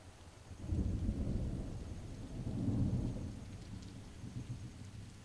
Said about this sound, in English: After a while, the energy of the storm subsides.